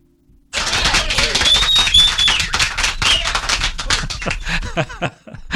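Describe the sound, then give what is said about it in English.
A sudden burst of brisk, loud clapping from the show's producer starts after a brief silence, continues steadily for several seconds, then thins out and fades near the end. “A little delayed applause there from my producer”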